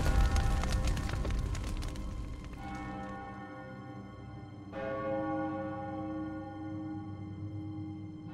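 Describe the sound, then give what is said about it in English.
A large town bell tolls in slow, spaced strikes up to eleven, each stroke ringing out loud and resonant with a long humming decay before the next one lands. “The town bell chimed loudly through the open window, ringing until it reached 11.”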